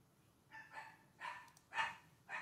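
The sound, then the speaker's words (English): Pet dogs bark in short, sharp bursts, five or so yaps in quick irregular succession, fairly quiet, with no one talking over them. “They go my crazy ass dogs.”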